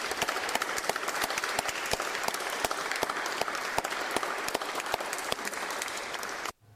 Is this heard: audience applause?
yes